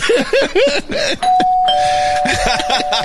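A loud electronic doorbell sound effect: a quick run of bouncy, swooping chirps, then a steady sustained tone that holds to the end while more chirps play over it.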